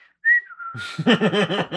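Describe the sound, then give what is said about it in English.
A short, casual whistle sounds out, a thin sliding note lasting about half a second, before a voice breaks in and continues over the rest of the moment. “I just have this image in my mind of this old British dude throwing a rock at a guy and then, like, whistling.”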